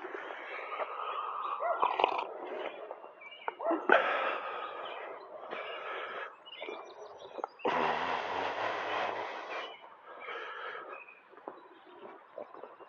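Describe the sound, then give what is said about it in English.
A dog, a grandmother's dog, barks repeatedly in short, irregular bursts, with a loud rushing, rumbling noise surging briefly midway before the barking continues. “Oh, now the dog's gonna start barking.”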